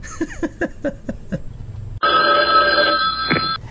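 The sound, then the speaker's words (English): A telephone rings for an incoming call with a quick series of pulsing electronic trills, then switches to a loud, steady sustained tone that cuts off abruptly. No one speaks. “Do you want to do another phone call?”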